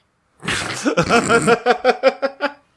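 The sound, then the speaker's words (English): A person imitates snoring: a raspy, breathy inhale followed by a string of about five short, rhythmic voiced snorts that fade out. “Chili, are you okay with that? Snore.”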